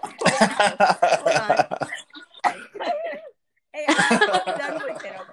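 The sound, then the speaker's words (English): A woman coughs harshly in rapid bursts, a dense fit at first, then scattered hacks, a brief silence, and another run of rough coughs. “Now, there's the cough again.”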